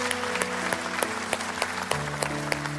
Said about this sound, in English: Come on, let's give God a round of applause today.